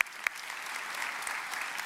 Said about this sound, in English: And Orchard Church, can we just give a big round of applause and appreciation for those that faithfully serve here at Orchard Church? Come on, church, give it up for them. Amen.